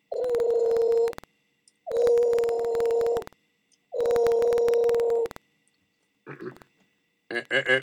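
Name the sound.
telephone ringing sound effect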